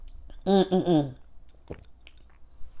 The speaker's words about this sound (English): And I'm sipping on a fresh batch of strawberry lemonade.